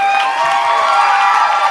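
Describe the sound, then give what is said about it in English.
An audience gives a standing ovation, cheering and screaming without pause, a loud, dense roar of many high voices holding steady for the whole stretch, with no single voice standing out. “And now you're screaming like I'm your favorite band?”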